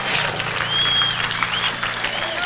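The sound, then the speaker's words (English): A church audience claps together after a prayer to give the Lord a hand, in dense, sustained applause that is steady and fairly loud throughout, with a faint high whistle-like tone rising briefly above the clapping. “Everybody, say amen and let's clap and give the Lord a great hand.”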